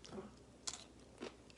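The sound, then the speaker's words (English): A crunchy bite into a big, thick-cut Dollar Tree pickle, then a few sharp, crackly chewing crunches spaced about half a second apart, fairly quiet with no talking. “Real crunchy.”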